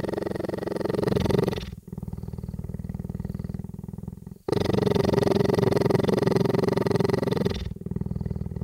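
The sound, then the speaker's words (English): A huge cheetah weighing about 180 pounds purrs loudly, a deep continuous rumbling that swells and shifts with each breath, repeating in several long cycles separated by brief pauses. No voices. “I recorded the cheetah, the huge and very kind cheetah cane.”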